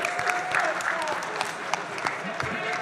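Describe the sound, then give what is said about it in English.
Steady audience applause, a dense wash of many hands clapping at once, with some crowd chatter mixed underneath, sustained throughout without pause. “Must be applause.”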